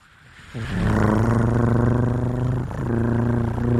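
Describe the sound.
A person imitates a cat's purr with a loud, rattling throat rumble, held in two long stretches with a brief break for breath. No other sounds.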